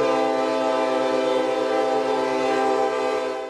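A train horn blares in one long, steady, loud blast over a low rumble of the passing train, then starts to fade in the final moment.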